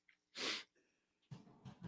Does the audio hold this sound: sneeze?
yes